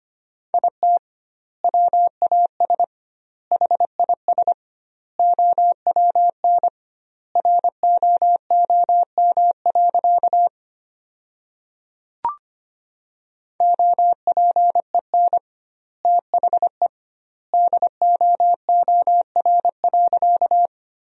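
Morse code beeps at a brisk 25 words per minute with double word spacing, sending sentences built from the top 300 words: a single steady mid-pitched tone keyed in quick dots and dashes, grouped into words with noticeable pauses between them and a brief click midway.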